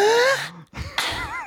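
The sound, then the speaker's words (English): A male singer's sharp, audible intake of breath cuts in after a brief pause, surrounded by sustained, wavering sung vocal tones at the start of a song. “Just he's breathing in the chemicals.”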